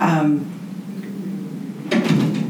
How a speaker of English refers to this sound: That's the boarding door closing. That's the door.